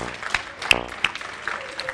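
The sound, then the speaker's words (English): Scattered clapping from an audience applauding the women, a dense patter of many hands with a few sharper claps standing out, moderately loud and steady over two seconds. “And we applaud all of you women, God's daughters.”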